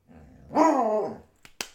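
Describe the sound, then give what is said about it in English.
A female pet dog named Jem Jem lets out one drawn-out, fairly loud bark after a low rumbling growl, with a few sharp clicks following. No one speaks. “Woof. Did you guys hear that?”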